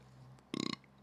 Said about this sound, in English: First burp down.